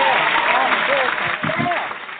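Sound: applause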